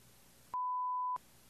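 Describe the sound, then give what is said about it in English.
A single loud, steady censor bleep tone lasts just over half a second, briefly replacing a faint background hiss that returns on either side. “I'll have to beep that out.”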